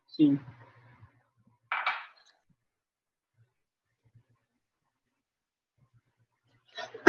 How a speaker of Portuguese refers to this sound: Desculpa, eu tô... Não, tranquilo, eu também tô tossindo aqui